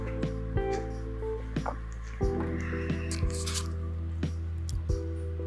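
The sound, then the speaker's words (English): Someone sips water in several brief, wet slurps and swallows, scattered irregularly over a few seconds, above a steady low hum. No one speaks. “Okay, but let me sip some water because my throat is burning.”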